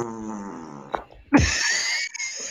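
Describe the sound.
A voice imitates a fart with a low, buzzy raspberry for about a second, then a short pop and a loud, breathy hiss that trails on to the end.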